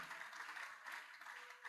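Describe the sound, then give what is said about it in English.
A crowd claps together in a steady, dense wash of applause lasting under two seconds, fairly soft overall, with no voices standing out. “Can you clap?”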